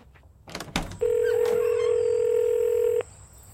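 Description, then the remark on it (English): A few soft handling clicks, then a loud, steady electronic phone dialing tone as someone dials a phone to call a friend, holding evenly for about two seconds before cutting off abruptly, with no one talking. “Okay, I gotta call her. I'm gonna go call her right now.”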